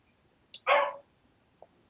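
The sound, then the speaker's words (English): A single sharp dog bark rings out, loud, preceded by a brief click and followed by quiet with a faint tap. “Hang on, my dog's barking.”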